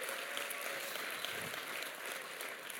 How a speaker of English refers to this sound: Let's give the worship team a huge round of applause for the amazing job that they did today.